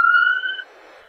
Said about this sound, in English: Let's just let that ambulance drive by.